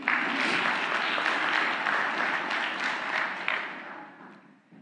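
Sustained applause from an audience, a dense wash of many hands clapping at steady volume that gradually thins and fades out toward the end.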